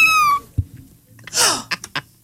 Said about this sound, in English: All he did was go to YouTube and put in kittens mewing.